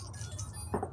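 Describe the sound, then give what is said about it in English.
Dice being rolled for a character's power score in a game: a short, bright clatter of hard clicks and rattles bursts out near the end, following a quieter stretch over a low, steady hum. No one speaks. “So go ahead and roll your power, and I'll roll Shannon's.”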